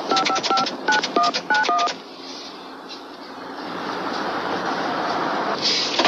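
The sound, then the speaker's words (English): A quick run of around ten telephone keypad dialing tones, crisp two-pitch beeps in uneven clusters, followed by a steady, rushing rumble that grows slightly louder. “He was calling his big squeeze, Princess Di.”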